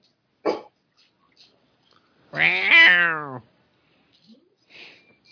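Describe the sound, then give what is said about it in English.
A pet cat lets out a single drawn-out, moaning growl lasting about a second, fairly loud, with a few short breathy huffs before and after in otherwise quiet surroundings. “Don't you growl at me.”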